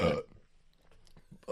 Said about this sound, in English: And then, man, I'm burping over here. So much carbonation.